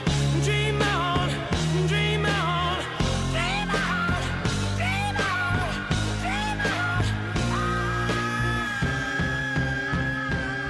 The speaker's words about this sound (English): the great frontman in the history of rock and roll, screaming at the top of his lungs.